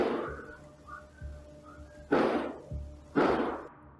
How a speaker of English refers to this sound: A half an hour earlier that night, at 10 p.m., the same surveillance camera recorded eight loud bangs, sounding like gunshots.